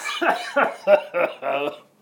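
A string of five short, muffled coughs in quick succession, moderately loud, held back as someone tries to suppress a cough, with no talking.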